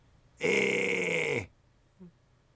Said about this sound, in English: Yeah, your mic's still on, so don't be groaning too much. Just grinding one out.